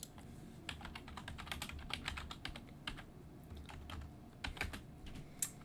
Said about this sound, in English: He's got this old clackety keyboard. Wow. It looks like it's from 2005.